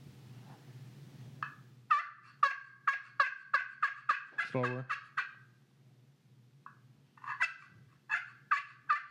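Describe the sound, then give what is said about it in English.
A turkey call imitating a gobbler: a fast run of about ten raspy, high yelping notes, a pause, then a shorter burst of four more, over a low steady hum, with a brief spoken word. “Now make some noise. Call us in a goblin.”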